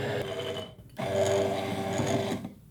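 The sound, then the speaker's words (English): A blender making mayonnaise whirs steadily with a loud, dense motor hum and bright tonal whine as oil is poured in while blending, briefly dipping in pitch and volume before surging back up, then cutting off near the end. “Now, while blending, I'm gonna pour in this oil.”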